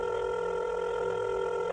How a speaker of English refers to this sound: With her other hand, she grabbed her phone and dialed a number.